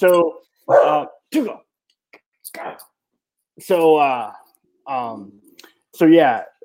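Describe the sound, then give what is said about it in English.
A dog yelps in the background in a series of short, sharp, high-pitched cries with brief pauses between them, fairly loud. “Sorry, I'm distracted by my dog yelping in the background.”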